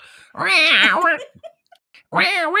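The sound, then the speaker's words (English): A person imitates a cat's meow: one long, wavering, drawn-out meow, a short pause with small mouth noises, then a second meow that gets cut off. “I do it with my cat. Oh yeah, do your cat.”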